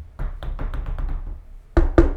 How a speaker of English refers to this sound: Knock on wood.